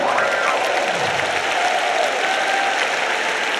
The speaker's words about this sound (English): And you ought to praise him right now. Come on, clap your hands and love it.